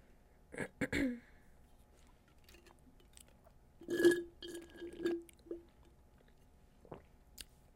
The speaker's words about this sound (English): I'm saying like that gulp was loud.